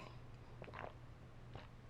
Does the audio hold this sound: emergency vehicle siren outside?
no